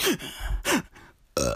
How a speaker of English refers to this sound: Bro, I got a hiccup. What you want me to do? I got a hiccup. And you know what's funny about my hiccups, bro? When I get a hiccup, I burp as well.